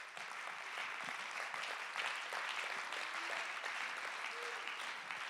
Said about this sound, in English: Let's clap our hands and give God great praise.